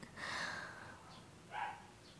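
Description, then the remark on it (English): Dogs bark, two separate bursts a second or so apart, faint and muffled, with no voices. “Oh my gosh, I'm so sorry, guys, if there's, like, dogs barking.”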